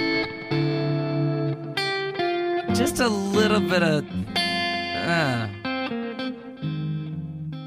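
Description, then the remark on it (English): Electric guitar played through the harmonic tremolo effect of a Flint pedal, ringing sustained chords and a few sliding, bending notes with a shimmering, processed tone, while a voice briefly speaks over it. “Some harmonic trim from the Flint.”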